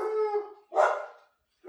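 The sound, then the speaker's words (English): Dogs bark and howl, a drawn-out harmonic howl followed by a sharp, noisy bark, then a brief pause before another bark begins. “And those are my dogs.”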